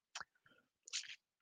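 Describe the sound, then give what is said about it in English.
Wet mouth sounds of someone sipping water: a quick slurp, a softer gulp, then a longer sip, with no talking. “I'm going to go through a bit of water tonight, talking all night for myself.”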